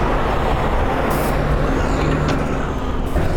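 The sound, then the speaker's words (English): Continuous heavy road traffic as five trucks pass by, a dense low engine drone with a brief hiss like an air brake, the trucks rolling past one after another. “All of a sudden, 5 trucks wanted to pass by.”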